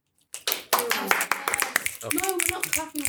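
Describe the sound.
A group of people snap their fingers instead of clapping, making a dense, scattered patter of sharp clicks like soft applause, with voices talking and calling out over it.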